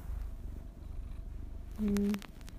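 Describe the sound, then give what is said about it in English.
A soft, steady purr from Moose the cat rumbles low throughout, with a brief tonal chirp-like sound near the end and no talking. “It's he's kind of purring a little bit.”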